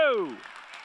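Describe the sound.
An audience claps in a steady, crackling wash beneath a loud voice whose cry slides downward in pitch before fading, leaving the clapping to continue at a moderate level.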